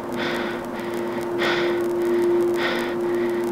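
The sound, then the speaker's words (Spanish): Three slow, heavy breaths come through a thin, hissy radio line, steady hum and static underneath, with no voice speaking between them. “No hubo respuesta, solo su respiración.”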